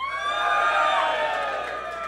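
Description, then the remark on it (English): A live audience cheers loudly for Cal McGregor, a dense wash of shouts and whoops that holds steady for about two seconds without easing off. “Should we do the cheer thing again?”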